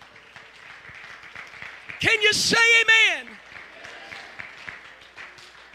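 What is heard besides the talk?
audience clapping hands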